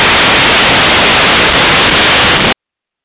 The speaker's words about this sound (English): For some strange reason, everybody I go to, I'm getting this loud static. Very interesting.